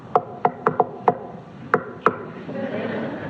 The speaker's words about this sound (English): And as Peter knocked at the door of the gate, it probably wasn't like this.